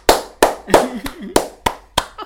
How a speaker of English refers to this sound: Even when I go to see the rep versions, I sit all the way to the end of that. And then I clap. Every time I clap.